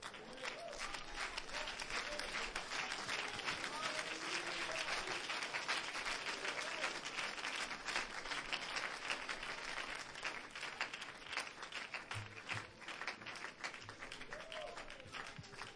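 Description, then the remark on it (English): Sustained, loud applause from a large audience clapping to give God praise, a dense wash of many hands clapping steadily for about sixteen seconds, with faint voices and cheers mixed in underneath. “Clap your hands again and give God praise.”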